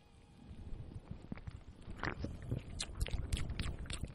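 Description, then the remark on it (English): Someone sips a fizzy Sprite soda right at the mic, with wet gulps and a soft crackle of carbonation building over a few seconds. No one speaks. “Let me enjoy this Sprite for a second.”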